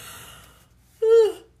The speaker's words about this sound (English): Oh, gosh, how many times am I going to yawn now?